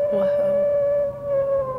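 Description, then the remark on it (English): A high, sustained howl of singing dogs howling together in chorus holds one steady pitch with a thin, whistling quality, carrying on without a break for the whole stretch at moderate loudness. “And so they'll all howl together, but it's not a wolf howl. Because a wolf howl is actually very low pitched. Whereas the singing dogs are more high pitched.”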